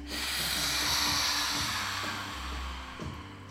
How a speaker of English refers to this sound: Coming forwards with lion's breath this time, stick out your tongue, stretch the muscles through your face. And three more in that way, breathing in and breathing out.